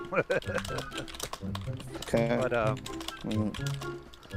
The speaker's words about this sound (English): Yo, is someone typing in? Is someone accessing in the mainframe? Yes, Tyler's ferociously typing.